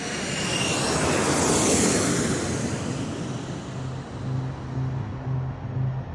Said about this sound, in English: And those remotely piloted vehicles, those drones flying high above the thick rainforest canopies of Vietnam, became known as... the Lightning Bug. The Ryan Firebee drone. Otherwise known as the Lightning Bug.